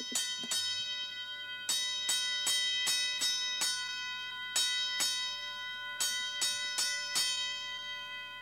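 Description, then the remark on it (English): A fire alarm bell rings out in a series of sharp metallic strikes, about sixteen in uneven bursts, each leaving a bright, sustained ringing tone; no voices are heard. “Here comes the fire alarm.”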